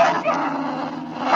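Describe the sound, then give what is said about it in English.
A rabid-looking dog in a specimen case snarls and barks aggressively with its teeth showing, a loud, continuous burst of growling and yapping lasting just over a second. “They look in the box and they see this rabid animal barking its head off with its teeth showing.”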